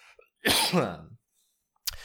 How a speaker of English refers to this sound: Excuse me, I got a cough real quick.